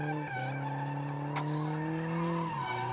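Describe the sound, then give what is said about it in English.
A loud, sustained tire squeal as an all-wheel-drive car drifts sideways, holding a steady screeching pitch for several seconds with an engine roaring underneath and a brief sharp burst partway through. “Well, yeah, see, they're getting it sideways.”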